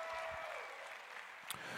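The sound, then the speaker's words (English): An audience clapping hands and shouting praise to God in a dense, continuous wash of applause, with a few raised voices and a brief sharp accent near the end. “Come on, if you're ready for the house to be filled with love, just clap your hands and give God a shout.”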